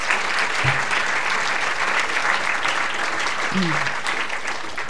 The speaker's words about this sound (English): Don't clap the individual poems because they get awful jealous of each other. And also, it takes up some of my precious time with you tonight. No, they really do get very jealous.